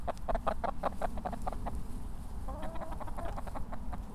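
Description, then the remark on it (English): Chickens kept out in the open on a farm, near an orchard and a raised coop, cluck in a steady run of short, repeated calls, loud at first, then softer overlapping clucks continue over a constant low outdoor rumble. “we're just wandering up from the orchard towards the chickens.”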